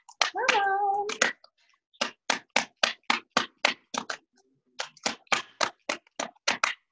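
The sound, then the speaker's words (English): Tarot cards being shuffled: a run of crisp, evenly spaced papery snaps and taps in two bursts separated by a short pause, with a brief hummed voice at the very start. “Okay, hold on, let me give it one more shuffle.”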